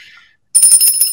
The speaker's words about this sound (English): Well, I don't, there should be a different bell for that, but all I have is this one.